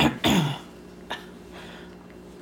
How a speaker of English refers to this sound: I'm sorry. I think I just. Yeah. Did you just cough in your mouth?